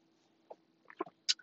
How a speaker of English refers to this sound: But hold on, y'all. I got to take a sip of my drink.